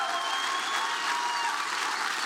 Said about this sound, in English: But we're not going to let them have him because he has a church, and this church loves him so much. They're going to stand to their feet right now and cheer this man on and say, we love you,